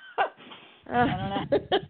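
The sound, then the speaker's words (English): A short, breathy burst followed by a louder, voiced sneeze, then two quick sharp bursts trailing after, all without speech. “God bless you.”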